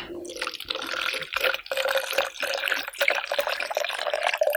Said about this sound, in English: I'm glad you drink the fucking water. I'm glad.